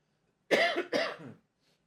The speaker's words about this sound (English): Excuse me. Okay. Had to cough there. I turned my mic off to do it.